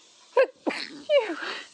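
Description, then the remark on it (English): A loud sneeze: a sharp voiced intake breaks into a noisy, explosive burst, followed by a shorter trailing gasp, all heard alone without other talking. “Bless you. Excuse me.”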